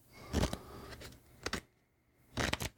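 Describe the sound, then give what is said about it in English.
Crisp riffling of a deck of cards (deck two of the Classic Five question cards about classic monster movies) being shuffled, coming in several short papery bursts separated by brief quiet gaps, with no talking. “Deck two. You ready? All right, here we go. Give it a good shuffle.”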